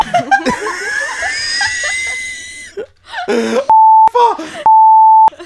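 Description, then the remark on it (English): Two loud, steady censor bleeps, each under a second long, cut in one after the other over a spoken last name, with a burst of talking between them and laughter-like voices earlier. “I mean, like, we'll beep that part.”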